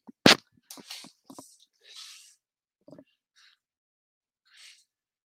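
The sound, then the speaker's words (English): A single sharp, explosive sneeze bursts out near the start, followed by scattered breathy sniffs and soft hissing exhales that fade into quiet. “Had a sneeze coming. I couldn't reach my tissues.”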